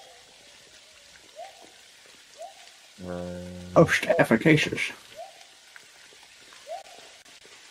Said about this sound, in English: It's raining. And just as the hut goes up, there is this steady rain that starts to come down.